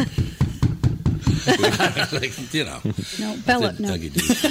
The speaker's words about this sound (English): You just freaked out the dog. Bella starts barking because I knock on the table.